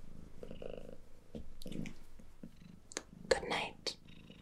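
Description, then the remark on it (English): A domestic cat sitting on a person's lap purrs softly and steadily, a low rumbling texture running beneath quiet, breathy speech and small rustling movements. “with cat purring”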